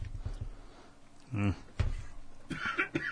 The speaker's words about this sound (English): Mm. You all right? Yeah, I just got a cough I've had in the last like 20 minutes. It won't go away.